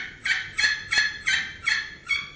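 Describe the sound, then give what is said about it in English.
A steady series of about six raspy turkey hen yelps made on a slate call, the striker worked in an almost oval shape so each yelp rolls over, evenly spaced and fairly loud, with no voices present. “where you're yelping, you got to get it to roll over, so I like to do it almost an oval shape.”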